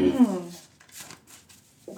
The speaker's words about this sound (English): So just so you know, I'm being fair, and I'm going to shuffle these questions up.